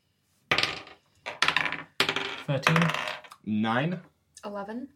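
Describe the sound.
Dice rattle and clatter across a hard surface in several bright, scattered bursts as a wisdom check is rolled in a tabletop role-playing game, followed by a short stretch of someone speaking at the end.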